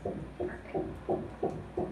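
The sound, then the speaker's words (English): A fetal heartbeat on an ultrasound monitor, picked up as the doctor places the sensor over the baby girl's heart: a rapid, steady series of muffled whooshing thumps, about three per second, with a low hum underneath and no talking. “And as we were watching this, and when the doctor put the sensor right over her little heart and we heard that heartbeat.”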